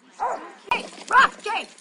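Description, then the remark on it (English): Dogs bark in a few short, separate bursts at a dog park, fairly loud, with a busy outdoor background that may include faint voices. “Most of the conversations I have with Ollie happen at the dog park.”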